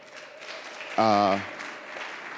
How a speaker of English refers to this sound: I think we should clap for our music